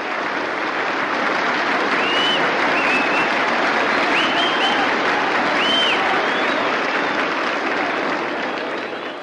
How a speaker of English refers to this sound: Now the man coming up to the plate, do a little hitting for Detroit, is Dizzy Trout. Here he comes, and listen to that round of applause for him. He's pitched a good game.